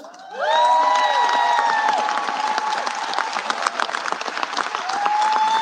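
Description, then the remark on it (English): Sustained applause from a large crowd of Democratic lawmakers on the House floor applauding Hakeem Jeffries, steady dense clapping with rising cheers and whoops layered on top, loud throughout the whole stretch. “Gabe Sanchez is joining us as the Democrats applaud Hakeem Jeffries.”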